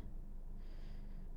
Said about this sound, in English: As you exhale, press the air all the way out through your nose. Good. Just repeating that process in and out through your nose. We're going to try to carry this deep nose breathing as we move today. So do your best with it.